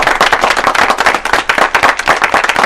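Steady, dense applause from a group, many sharp overlapping claps at a quick irregular rhythm, loud and continuous for a few seconds with no voices.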